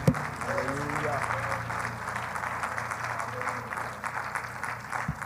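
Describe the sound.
An audience claps their hands unto the Lord in a morning service: a dense, steady wash of applause that holds throughout, with a low sustained hum and faint voices mixed underneath.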